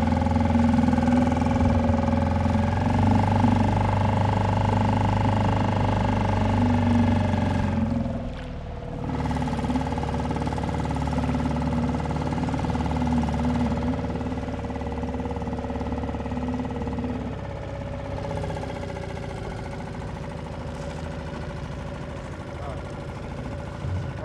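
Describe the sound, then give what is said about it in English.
The engine of a Zodiac inflatable motorboat drones steadily and loudly as it takes off, its low hum briefly dipping and shifting pitch partway through before settling again, with wind and choppy water noise mixed in. “Are we all going to get the boat? Yeah. Okay. We climbed in and took off.”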